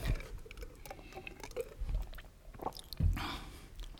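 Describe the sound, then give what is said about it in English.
Someone sips water, with soft wet mouth clicks, a swallow and faint rustling. No one speaks. “I'm going to get a drink of water first because my mouth is dry.”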